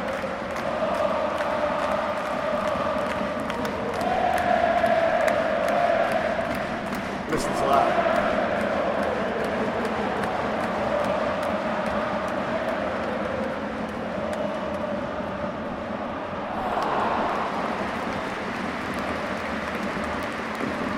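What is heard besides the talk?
football stadium crowd roaring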